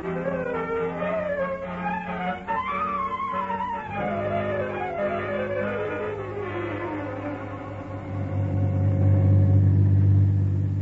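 A car engine drones and revs, its pitch rising and falling as it drives back along the way it came, looking for a turnoff trail into the woods, with a deep rumble that grows louder toward the end. No voices are heard.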